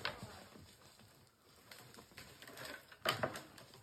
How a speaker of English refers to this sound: Locking horns. Dude, the sound of that is brutal.